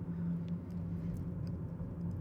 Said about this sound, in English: I'm coming to you today from my car. And actually, I'll be hosting most of the show from my car.